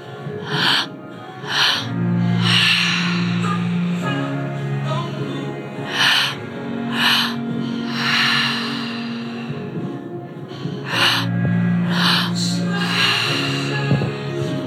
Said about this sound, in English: Mouths are still open, we're still breathing.